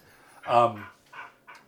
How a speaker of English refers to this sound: That dog is just going crazy.